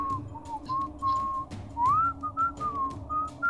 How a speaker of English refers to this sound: What, a whistle?